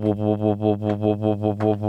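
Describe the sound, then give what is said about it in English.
A voice hums a steady low drone that pulses in a regular wobble about four times a second, imitating the rolling hum of a Honda car's tires on the road. Fairly loud, with no talking. “Just because if I have a Honda doesn't mean you have to do an accurate impression of it.”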